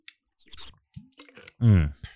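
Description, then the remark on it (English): Sipping of a 2017 yellow label Cabernet red wine: a few small wet lip clicks and mouth noises, then a louder, brief slurping draw with a voiced hum, with no talking. “Let's have a sip of this one.”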